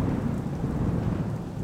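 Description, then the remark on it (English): Heavy rain pours down in a steady, dense hiss over a deep, continuous low rumble of a thunderstorm, loud throughout with no voices. “Thunderheads, miles away across the plain, but coming towards them fast, and with them, sheets of rain.”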